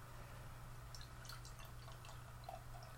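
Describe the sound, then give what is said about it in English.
A carbonated drink fizzes softly after being poured, with faint, irregular crackling pops over a steady low hum, quiet, with no voices. “Mine sounds like a science experiment over there.”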